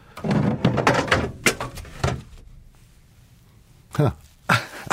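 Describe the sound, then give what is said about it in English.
An elk antler tumbles off a shelf, giving a scuffling clatter followed by several sharp, loud knocks and thuds spaced irregularly, with quiet pauses between them. “Something just fell off the shelf in here. It was an elk antler.”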